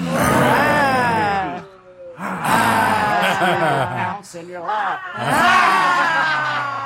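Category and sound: vocal imitation, people imitating lion roars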